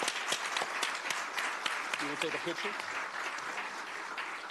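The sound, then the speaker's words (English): A crowd at a Black history event in Sacramento applauds steadily, a dense wash of many hands clapping at an even, moderate level throughout, with a few voices talking briefly over it. “Another round of applause, if you will, please.”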